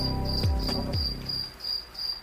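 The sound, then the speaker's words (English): Steady, high-pitched cricket chirps pulse in a regular rhythm, with a couple of low thumping sweeps early on before the chirping carries on alone at a moderate level. “Hear the crickets?”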